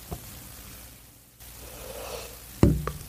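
A drawn-out, breathy yawn, rising and fading over about a second, followed by a brief low thump and rustling.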